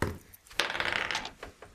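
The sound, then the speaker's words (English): Dice clatter and rattle together as they are gathered, a quick burst of clicks followed by a few lighter taps, like dice being scooped up and shuffled in a hand. “And I need to get some dice here for this thing.”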